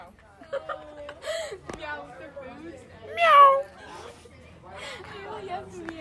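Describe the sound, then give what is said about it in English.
A person imitates a cat, producing a few drawn-out, rising and falling meows with a loud peak in the middle, mixed with soft laughter and chatter. “Thank you for tuning in to meowing segment.”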